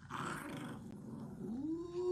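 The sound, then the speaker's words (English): A dog growls low and continuously, a rough rumbling snarl that rises into a higher whining tone near the end, fairly loud with no talking. “Stop torturing the dog.”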